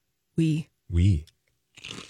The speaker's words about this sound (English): Oh, she's crunching. It's got a nice potato crunch.